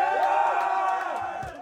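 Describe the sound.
A crowd at a live band show cheers and screams in a steady, dense roar of many high voices, staying loud across the whole stretch before easing slightly at the end.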